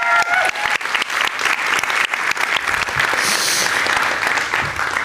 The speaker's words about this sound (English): Should we give them another round of applause?